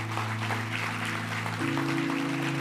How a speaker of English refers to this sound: Come on, let's give a hand clap to those that prayed. There was many.